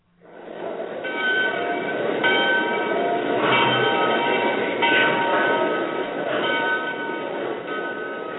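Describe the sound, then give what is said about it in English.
A train rumbles steadily and loudly throughout, with rhythmic clatter bursts from the wheels on the rails and a faint sustained metallic ringing tone above the roar. No one speaks. “You take your train and leave Berlin.”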